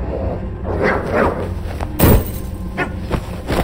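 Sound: dog growling and barking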